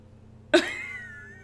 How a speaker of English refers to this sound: Hi, cats are growling at each other. Like, actually growling at each other.